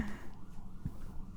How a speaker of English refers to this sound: Well, the fire truck. I'll just wait for them to go by.